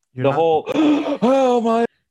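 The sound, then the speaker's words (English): A voice imitates the heavy-breathing delivery of preachers in IFP sermons: three loud, strained vocal bursts full of gasping air, each drawn out and pitched like huffing exhalations, with no clear words. “First of all, I want to know, as I perused IFP sermon clips months ago, where did this whole heavy breathing, everybody copying somebody, come from when they're preaching?”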